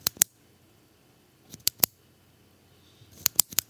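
Two retractable pens, a blue pen gear pen and a pen from an orthodontist's office, clicking close to the mic in short bursts: a couple of sharp clicks, a pause, a few more, then a quicker cluster of clicks near the end. No one speaks.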